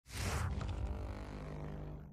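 A cartoonish fart sound effect from Stone Ocean, part 6, Emporio's ability: a sharp, hissy burst opens into a long, low, buzzing rumble that holds steady for about two seconds before trailing off slightly. No one speaks.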